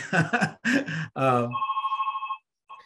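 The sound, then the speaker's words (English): A telephone rings with a rapid, trilling electronic warble, loud, just after a person finishes talking; one long ring burst, then a pause and the start of another. “Oh God, that phone never rings.”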